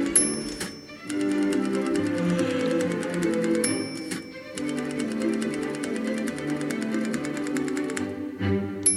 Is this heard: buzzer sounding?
no